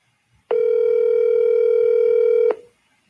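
A single steady electronic ringing tone from a phone line on speakerphone, as a number is called live on air, lasting about two seconds, loud, then cutting off into near silence. No one speaks.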